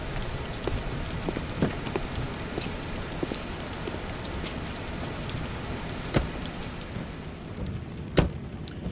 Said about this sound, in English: Son, what the hell are you doing out here in a storm like this?